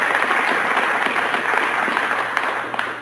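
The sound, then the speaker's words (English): Sustained audience applause, a dense wash of many hands clapping at steady loudness, tapering slightly toward the end with a few sharper individual claps standing out. “People just don't applaud like that with their hands and their heads.”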